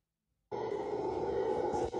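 A deep, rough, sustained roaring growl bursts in after a brief silence and holds loud and steady, a howler monkey calling in the jungle of Costa Rica, with no talking.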